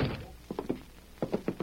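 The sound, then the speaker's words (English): A door shuts with dull wooden thunks, two quick bursts of three muffled knocks each, moderately loud, with no voices over them. “Close that door.”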